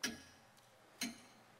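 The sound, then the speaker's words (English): Two crisp, bright clock ticks land about a second apart, each a sharp click with a brief metallic ring, heard alone against a quiet background. “Remember something. The clock is ticking.”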